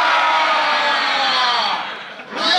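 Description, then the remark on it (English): A crowd of Detroit Lions fans, on a count of three, lets out a loud, sustained roar like the old-school Lions logo roar for a win, a broad wall of yelling voices that dips briefly near the end before surging back up. “And can we give a loud roar, like the old school Lions logo roar, for a win today on the count of three?”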